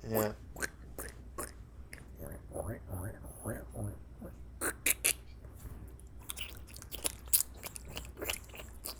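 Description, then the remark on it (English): A voice imitates a can opener working open a can of tuna fish to make a tuna fish sandwich: a run of crisp, crunchy clicks and scraping bursts in an uneven rhythm, with breathy mouth noises and a short hummed stretch. “open this can of tuna fish with this can opener.”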